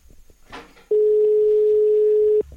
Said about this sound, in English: Spanish ringtone there. That's good, that's foreign dialing tone, isn't it? It's a Spanish ringtone.